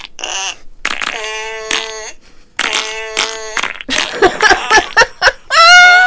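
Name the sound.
wet fart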